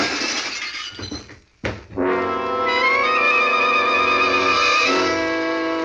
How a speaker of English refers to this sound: Someone had fired through the window and nailed the janitor before I could make him talk.